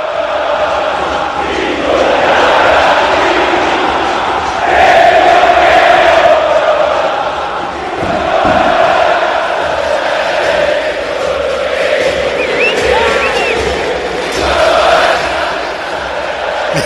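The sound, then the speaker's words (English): A huge stadium crowd of 85,000 people chants Diego Maradona's name in unison as he walks out onto the field, a dense roar of voices rising and falling in repeated swells, loud and steady throughout, with scattered whistles and shouts on top. “And they are chanting his name, and 85,000 people to your debutante ball.”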